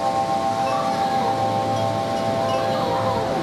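Recorded by a home security camera: steady, loud wind roars through the whole recording while wind chimes ring in sustained, overlapping tones above the rushing noise. No one speaks.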